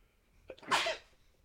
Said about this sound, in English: I'm gonna sneeze. I'm so sorry. Bless you.